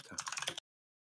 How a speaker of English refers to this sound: Here, I'll write it right here. You hear me typing.